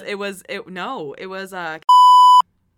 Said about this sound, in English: I'll bleep that.